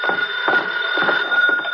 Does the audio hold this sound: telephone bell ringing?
yes